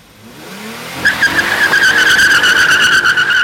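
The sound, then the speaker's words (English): A stolen car's engine revs up at a filling station, then tires screech in a long, loud, sustained skid as the car accelerates away, with no voices. “Burnett threatened to shoot him and drove off”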